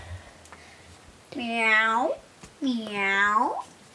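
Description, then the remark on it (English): A person's voice imitates a cat for an animal-guessing game, with two drawn-out, wavering meows, fairly loud, separated by a brief pause, with no other talking. “Meow, meow, meow. All right, 5, 4, 3, 2, 1. What's the animal? A cat.”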